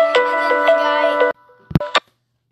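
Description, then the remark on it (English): A phone's ringtone for an incoming call chimes in a bright, steady electronic melody for just over a second while the phone is recording, then cuts off abruptly, followed by a couple of brief clicks or a short voice fragment. “I don't know if that phone call trying to come through is going to mess up our...”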